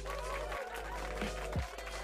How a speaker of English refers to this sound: Please give a warm round of applause to the one and only Deron the Chef.